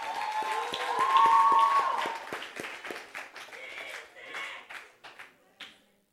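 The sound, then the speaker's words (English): A crowd cheers and claps on the winning team, formed by combining the top two teams, with whoops and a burst of dense applause at first that thins out into scattered, separate claps over several seconds before fading. “All right, let's cheer them on as they.”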